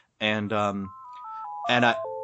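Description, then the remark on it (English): A home phone rings with a buzzy electronic ringtone: two harsh bursts, a short stepping melody of pure beeps, then the buzzy pattern starts again. “Wait a minute. I think that's their phone.”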